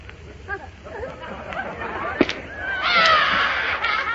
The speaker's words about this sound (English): Now look, you see that? It burst. Don't stop crying. I'll buy you another balloon.